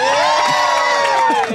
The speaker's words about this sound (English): We held up the bell that we use on the show before. Yeah. Huge cheer for the bell.